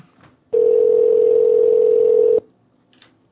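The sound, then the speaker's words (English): A loud, steady telephone dial tone hums for about two seconds and cuts off abruptly, followed by a single faint, brief beep like one key being pressed, as a radio show calls its second prize winner. “Who are you calling now? This is our second winner.”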